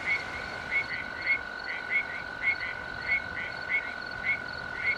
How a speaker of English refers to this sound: With night settled in the Angeles National Forest, arroyo toads advertise for mates. The males let out a soft, buzzing trill.